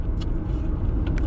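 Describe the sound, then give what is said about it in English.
A car drives along a road at about 30 with a steady, continuous low engine and tire rumble, fairly loud, with faint higher hiss bursts from road noise. No one speaks. “My car can drive straight. Why are they going so slow? I drive too fast for them.”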